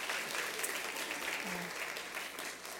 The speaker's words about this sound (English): Isn't this a wonderful tea party? I think we should give an applause to everybody who participated.